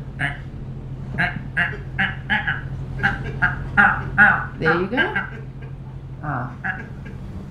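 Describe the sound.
A boat captain imitates an eagle's call with a run of short, chattering high cries in uneven bursts over a steady low engine drone, then a few spoken words.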